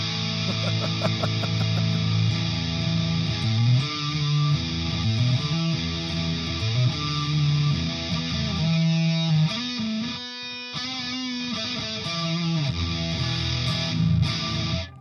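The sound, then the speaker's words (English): An electric guitar played through a distortion pedal, thick and buzzy, chugging through a steady riff of low chords for the whole stretch at a loud, even level, with no talking. “Yeah, those are different pedals from each other.”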